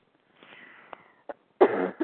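A raspy breath leads into a few close coughs: a short hack, then a loud, harsh cough, followed by one last quick cough. No one speaks.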